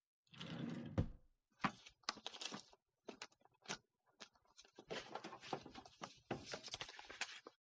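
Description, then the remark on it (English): A desk's top drawer scrapes open with a short sliding rush, followed by several seconds of irregular clattering and knocking as small objects are shuffled and rummaged through while someone searches for a pen, with no voices. “where's my pen? It was right here in the top drawer.”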